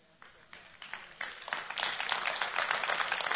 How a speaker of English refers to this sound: And I didn't say that for your claps, but anyway.